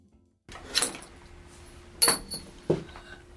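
A small metal wheelchair brake extender is thrown and clatters and clinks three times in quick succession, each impact bright and sharp with a brief ringing tail, over a faint steady hum and no talking.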